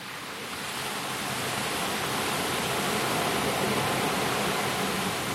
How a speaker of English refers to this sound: See, this one is the ocean, but it's like the perspective is looking out onto the ocean from the beach. I'm not like in the middle in of the actual ocean, right?